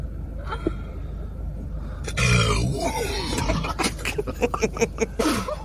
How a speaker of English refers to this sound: What was that? That was her burp. And then they laugh so hard. They can't get a hold of themselves. The other one spits out her Sprite and her eyes get so wide when she does that burp because she's shocked. That does sound like somebody possessed.